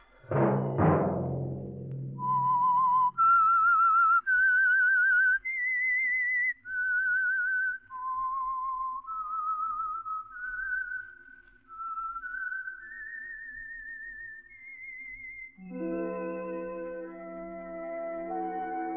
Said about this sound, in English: Let that whistle be your signal for the Signal Oil program, The Whistler, each Monday at 8.